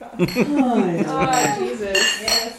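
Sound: glasses clinking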